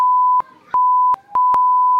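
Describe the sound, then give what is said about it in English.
A loud, steady, high-pitched electronic beep from a beat machine sounds in several long stretches, cut by brief quieter gaps, with a sharp click marking each start and stop. “Rob, can you get your beat machine ready?”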